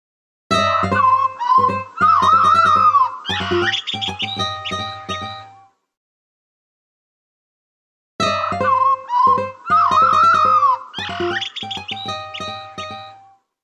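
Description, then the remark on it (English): Blackbird song in two matching phrases separated by a pause of silence, each a run of fluid, whistled notes with quick warbling flourishes and sliding pitches, fairly loud and with no talking. “Whereas what I love about the blackbird is this.”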